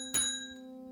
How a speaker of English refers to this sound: I got the bell around here somewhere. There it is.